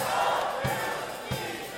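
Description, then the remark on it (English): An audience, urged to shout it out, shouts a response together, a loud, sustained roar of many voices that holds steady for about two seconds, with a couple of low thumps underneath. “No, your shouting is going down.”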